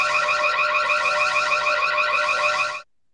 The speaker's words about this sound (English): He passed out on the desk. Let me play a siren noise, see if I can wake him up.